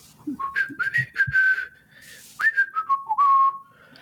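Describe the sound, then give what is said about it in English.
Someone whistles a short, wavering tune in two phrases, with sliding and held notes and a brief gap between them. The whistle is fairly clear, with faint breathy noise around it. “Why exactly are you whistling?”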